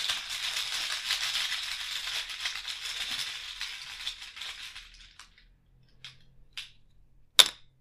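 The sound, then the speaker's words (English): Game tokens rattle and clatter in a chaos bag for about five seconds, a steady hissy jostling. It thins into a few scattered clicks, ending with one sharp, louder clack. No one speaks. “Now you get to hear my chaos bag.”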